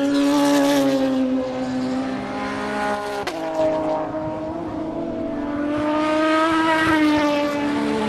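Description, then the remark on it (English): Two race cars, an Aston Martin followed by a Peugeot, roar past one after another about 40 feet away at the apex of the last turn, their engine notes rising and falling in pitch as each sweeps through, loud and sustained with no talking. “Those two were an Aston followed by a Peugeot.”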